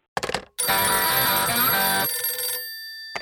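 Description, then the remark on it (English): A telephone rings for a pretend phone call: a brief electronic chirp, then one long, loud, bright ring that fades into a lingering tonal hum. No one speaks. “And I think I'll make this a fake phone call. See, so I'm just pretending to call.”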